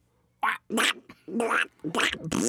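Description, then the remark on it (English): A duck quacks about five times in quick, uneven succession, loud, with brief gaps between the harsh, nasal calls and no other sounds around them. “That duck just twopence.”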